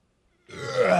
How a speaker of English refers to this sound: It's an old burp. With White Claw. This is a year old burp.